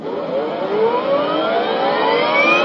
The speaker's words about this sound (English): Warp drive ready to engage. Engage warp drive. Warp engine engaged.